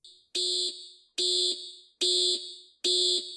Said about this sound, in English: At Loring Air Force Base in Maine, alarms sounded and the entire base was placed on high alert as a red flying orb crossed into the base's restricted airspace, flying at a very low altitude.